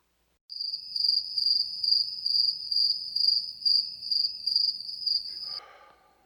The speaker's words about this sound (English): Thanks, Backup Crickets.